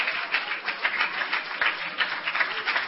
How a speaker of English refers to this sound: Hallelujah. Let's begin to clap our hands and praise the Lord right now.